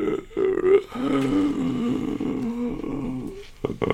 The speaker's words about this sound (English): And your personal custom rig, and you manage to successfully unlock the door, and the door comes open, and inside the room. You hear a moaning voice.